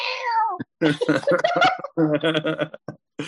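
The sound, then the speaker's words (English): A single drawn-out cat meow with a falling pitch opens, fairly loud, followed by a run of animated, chattering voice-like sounds. “She's asleep on the couch right now, so it's not her. But the cats actually do watch wrestling with me”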